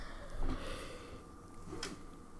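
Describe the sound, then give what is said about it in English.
A quiet yawn: a long breathy inhale with a soft gasping quality, then a fainter exhale near the end. There is no talking. “I'm yawning so much.”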